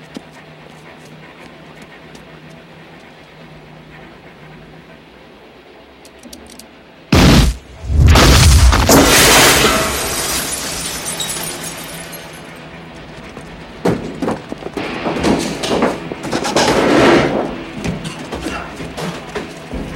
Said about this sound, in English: I'm actually really interested to know how they made all of the windows in each shatter of the rear cars at exactly the same time. It's such a sublime well-timed shot. Squibs, I assume.